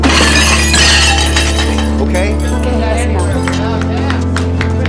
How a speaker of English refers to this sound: In about 5 seconds, a waiter's gonna drop a tray of dishes. 5, 4, 3, 2, 1.